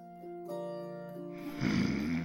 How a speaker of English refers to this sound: Mate, it turned out, did snore. Very loudly, too, for such a tiny creature.